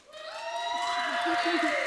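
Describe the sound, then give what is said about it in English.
A small audience gives a brief, thin cheer as a vote for seesaws, a few voices whooping together in a sustained high-pitched "woo" that holds steady for about two seconds at moderate volume. “Cheer, first of all, for seesaws.”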